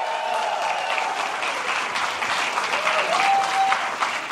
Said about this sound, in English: So how about a round of applause for yourselves for coming out to the live podcast?